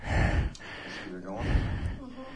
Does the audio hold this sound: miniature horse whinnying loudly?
no